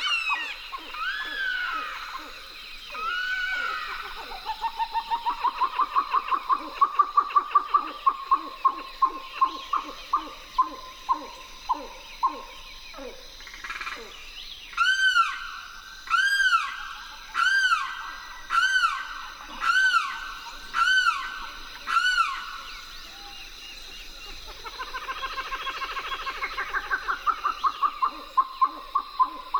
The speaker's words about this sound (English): We leave you this week in a riverine marsh in Florida. Lang Elliott and Ted Mack went to the Wakissa River's edge and recorded chattering grebes, a limpkin, and the harsh call of a red-shouldered hawk.